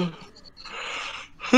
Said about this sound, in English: Who's yawning? Me.